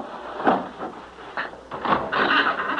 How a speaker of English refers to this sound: Now, come on, I'll push open this wooden bolt that fastens the door.